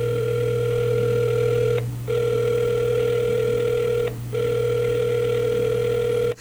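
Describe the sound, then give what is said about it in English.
A telephone rings over a speakerphone during a live on-air call to the Manhattan Center, a steady electronic tone held for long stretches with two brief breaks, sounding slightly tinny, with no one talking. “Still ringing, though.”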